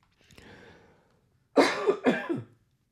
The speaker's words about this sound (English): Well, I got through most of this without coughing.